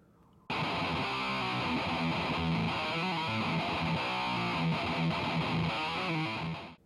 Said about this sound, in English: As a habit, I usually go for a much more distortion like sound for me live sound, away from using Reaper. When I have my distortion pedal on, it's an HM2, so it sounds more like this.